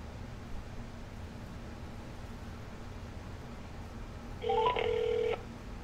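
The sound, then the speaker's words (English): Over a steady low hum and hiss, a phone dials near the end: a quick run of stepped electronic beeps, then about a second of steady ringing tone. No one speaks. “I'm just going to call him up, and let's get the ball rolling on this.”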